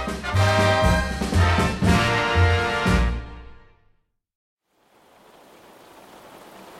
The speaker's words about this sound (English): And it sounds like that storm is starting to flare up out there. Yeah, the meatballs are probably really coming down. They sound extra saucy. I mean, it sounds just like regular rain to me